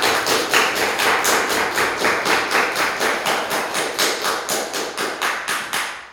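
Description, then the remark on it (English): Teens give a round of enthusiastic clapping in a steady, quick rhythm, roughly three sharp claps per second for about six seconds, loud and even throughout with no voices over it. “We had some very enthusiastic clapping.”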